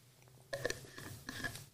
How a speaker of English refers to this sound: So excuse me while I take a drink of water.